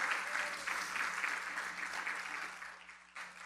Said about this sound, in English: And I want to tell you, this September, we will be married 34 years. Now you can clap.